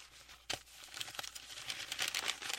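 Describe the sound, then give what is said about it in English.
A crinkly, crackling rustle imitating leaves, made by throwing leaves around and blowing them with a giant piece of paper, with a sharp crunch near the start and then a steady, dense patter of dry crackles, moderately loud, no talking. “But the beautiful sound of leaves rustling goes through, and they're actually throwing leaves around, and then using a giant piece of paper to blow them.”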